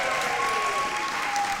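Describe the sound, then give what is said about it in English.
An audience applauds steadily for the lady in charge of the food at Heritage Christian School, a dense wash of many hands clapping at an even, fairly loud level for the whole stretch, with no voices standing out. “when I went to school, we weren't applauding in thanks.”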